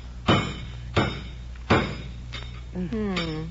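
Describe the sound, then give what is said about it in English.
Three loud, sharp cracking blows land about a second apart as a tough turkey is carved in the kitchen, its bones snapping under the carving knife, followed by a fainter knock as a voice starts speaking. “Jeeves is in the kitchen carving it now.”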